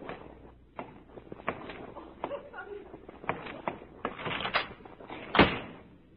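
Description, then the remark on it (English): A door is opened and closed as someone leaves: scattered clicks, rattles and shuffling movement, then the door shuts with one solid, fairly loud thump near the end. “A moment later, I'm going to turn around, and you will have gone quietly out of the door.”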